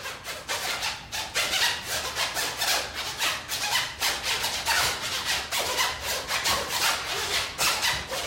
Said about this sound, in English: Yeah, one of the pieces is using zippers.